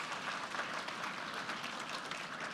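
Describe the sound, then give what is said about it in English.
A steady round of applause from a crowd for all the moms on Mother's Day, dense overlapping claps forming a continuous wash of sound at an even, moderate loudness with no voices over it. “Can we give a round of applause to all the moms?”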